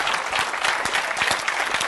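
An audience breaks into steady applause, many hands clapping together in a dense, continuous patter at an even, fairly loud level, with no voices standing out.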